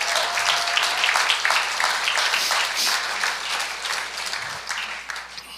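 An audience applauding steadily, a dense wash of many hands clapping at once that holds at a fairly loud, even level for several seconds, with no one speaking over it.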